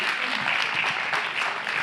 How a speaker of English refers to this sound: Very good. Everybody give them a clap. Excellent.